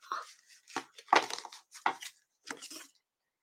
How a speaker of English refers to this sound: Okay, so as I'm shuffling, this one card keeps popping out at me. So I'm going to